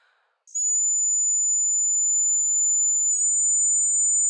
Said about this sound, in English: Also, the message that is whistled is ACAB, because ACAB, you know, is those English notes.